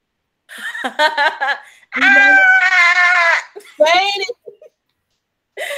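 A person lets out a series of loud, high-pitched screaming bursts: short yelps, then a long sustained shriek, then a few more cries and a brief final yell.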